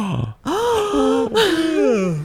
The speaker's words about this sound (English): I just yawned.